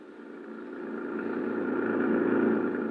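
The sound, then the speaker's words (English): A steady engine drone with a low, rumbling tone that gradually swells louder over a few seconds, as a government jeep drives back toward the city at a constant pace, with no one talking. “An hour later, Gino Romero and I were heading back toward the city in the government jeep, leaving behind us the wrecked plane, the crushed trees, and the lonely slope on the mountain.”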